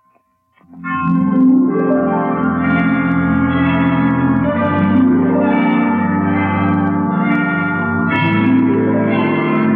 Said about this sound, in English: Well, 5 o'clock. I didn't know the hospital had chimes.